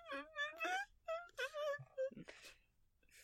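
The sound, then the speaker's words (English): A voice imitates a broken stereo: warbling, sliding wails and moans in short bursts, then a few breathy, noisy sputters before the sound peters out to near silence. “Apparently a broken stereo that peters out at the end. Hey, I'm great at sound effects.”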